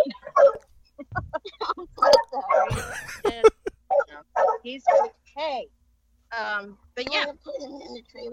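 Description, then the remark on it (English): A circus dog barks repeatedly in quick, uneven bursts, fairly loud, mixing sharp yips with a few higher, whining cries across several seconds. “I'm going to put the circus dog in the trailer.”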